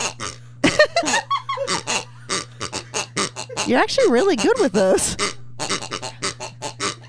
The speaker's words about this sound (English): He had these pigs, and him and I used to. Oh. Oh. See, they're little squeezy dog pigs.